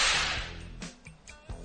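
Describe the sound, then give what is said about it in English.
A loud whooshing swish gives way to a quick series of four sharp, snappy whip cracks, spaced irregularly over about a second with no voices. “Because if you don't know the whip will not save you when it's time to whip.”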